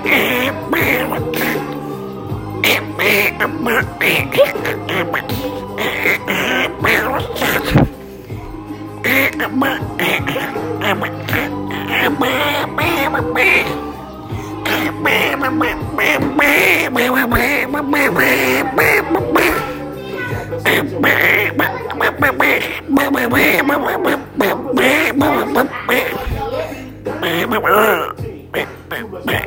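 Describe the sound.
A voice imitates Donald Duck, singing a song in a raspy, quacking tone over a steady backing beat, loud throughout.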